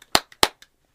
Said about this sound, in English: Hammer. Round of applause to Hammer.